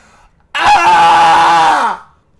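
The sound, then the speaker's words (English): A person loudly imitates the R2-D2 droid's electronic scream: one sustained, strained, buzzy cry lasting nearly two seconds, with its pitch sagging downward at the end. “Can you do the R2-D2 scream?”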